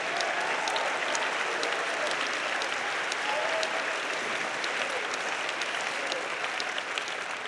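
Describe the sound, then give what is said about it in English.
An audience at a sermon claps steadily in praise to God, a dense, continuous wash of many hands filling the room for several seconds, with faint crowd noise underneath. “Would you clap your hands unto the Lord and give God some great praise?”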